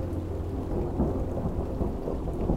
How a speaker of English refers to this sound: Off in the distance, I heard a low, growling thunder.